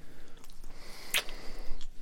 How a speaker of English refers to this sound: How come you're sneezing so much? Don't tell me I'll have to start wearing a mask when I'm around you.